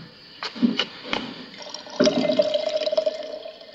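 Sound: kettle boiling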